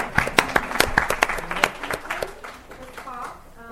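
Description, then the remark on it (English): A short burst of audience applause at a community talk's question session, as a survivor applauds herself for surviving: sharp, irregular claps that thin out and fade over a few seconds, with a voice starting to speak near the end. “Oh, and I just have to give myself a round of applause for mm-hmm. surviving.”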